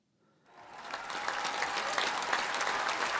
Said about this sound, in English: I like the little inputs of the little clapping or the cheers.